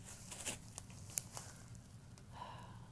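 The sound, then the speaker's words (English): Quiet handling noises as zip ties are tugged off and new rubber feet are unwrapped: a few sharp little snaps and clicks scattered among soft rustling and crinkling, with no talking. “This last little zip tie is going to give me problems.”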